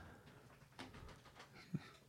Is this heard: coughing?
no